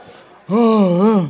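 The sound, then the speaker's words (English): A single drawn-out, voiced yawn, rising suddenly from near silence and holding a steady, slightly wavering tone for almost a second. “Get you yawning out, but you're going to be okay.”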